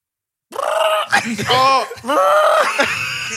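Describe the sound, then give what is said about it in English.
A person imitates a chicken with their voice: a few loud, strained clucking squawks with sliding, wavering pitch, delivered in quick back-to-back bursts after a brief silence. “that was a funky chicken, fam.”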